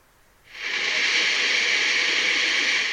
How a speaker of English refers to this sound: And yes, that's actual sound that I recorded while I was there in Niagara Falls a few years back. And you'll hear that throughout the show. It's a gorgeous area. You're in the United States looking over at Canada and vice versa.